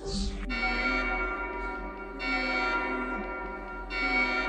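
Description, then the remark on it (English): An alarm bell rings continuously, a dense metallic tone full of overtones that swells in loudness every couple of seconds, with no voices. “Of an alarm.”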